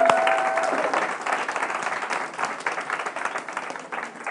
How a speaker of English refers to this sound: And so I just want to commend our children, our children's workers for that. And why don't we give them a round of applause?